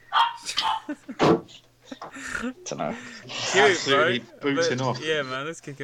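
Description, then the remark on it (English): Two small dogs, a chihuahua and a schnauzer-like dog, bark and yip in quick, high-pitched bursts, loud and overlapping, with a person's voice mixed in among the barks. “What type of dogs are they? One's a little chihuahua. One's like a little schnauzer.”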